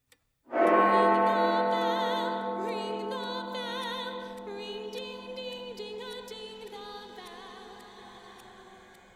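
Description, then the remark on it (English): A single loud bell strike rings out from a clock striking one o'clock and hums on in a long, slowly fading decay, with faint steady ticking audible beneath the lingering tone. “Ring the bell, ring the bell, ring ding, ding, ding, the bell. 1 o'clock.”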